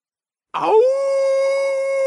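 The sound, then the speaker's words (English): After a brief silence, a wolf lets out a single loud howl that slides upward and then holds a steady, clear pitch until the end. “Awoo Awoo! The big bad wolf was looking for his prey.”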